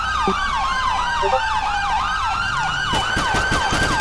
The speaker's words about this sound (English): Sirens on.